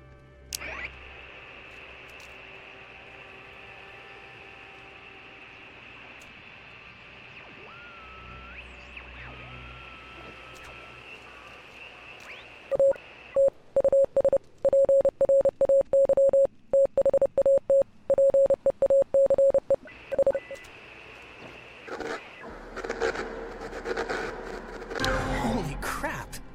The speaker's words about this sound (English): There's a little bit of talking here, but they're going to do some tuning in on the radio just to show you. So you're going to want to stand basically right around here and just tune the dial left or right until you start hearing some weirdness.